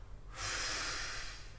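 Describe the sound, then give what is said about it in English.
A single deep, slow abdominal breath taken during a shoulder stretch while lying on one shoulder with the arm up, a steady airy rush lasting over a second, with a faint low hum in the background and no talking. “And I have been combining this with a breath these days.”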